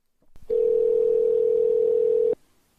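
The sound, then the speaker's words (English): A telephone line tone sounds as a phone call is placed, a single steady, loud electronic beep lasting about two seconds, preceded by a faint click, with no talking. “Let's get Nnedi on the phone.”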